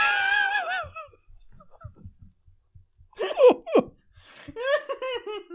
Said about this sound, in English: You know that TikTok of the guy snoring? Here's the audio of it.